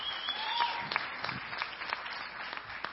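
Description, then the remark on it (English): An audience claps together while standing to thank God for his faithfulness, a steady wash of many hands with sharp individual claps popping out irregularly, sustained at moderate loudness with no voices. “Can we just clap as we're standing and just thank God for his faithfulness?”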